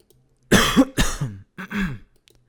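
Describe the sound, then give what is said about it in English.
A short run of three harsh, raspy coughs, loud, the first two back to back and the third after a brief pause, with no talking around them. “I wish I had a cough button.”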